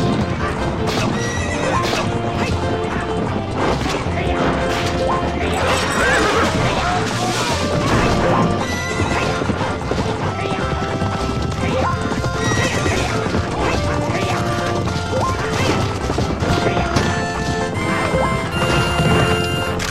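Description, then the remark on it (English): Horses whinny and neigh over a steady, rapid drumming of galloping hooves in a steeplechase chase scene from a Bond film, with occasional crashing impacts, all loud within a dense, busy mix that never lets up. “Like, let's have a chase scene, but let's have it steeplechase.”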